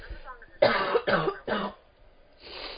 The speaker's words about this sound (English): Cough one.